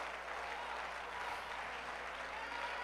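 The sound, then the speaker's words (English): An audience claps hands to the Lord in praise in a dense, steady wash of applause that holds at an even loudness for the whole stretch, with no voices standing out above it. “Come on, clap your hands to the Lord right now and give Him praise.”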